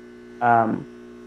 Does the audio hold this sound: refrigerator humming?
yes